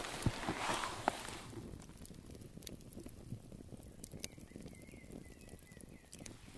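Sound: campfire crackling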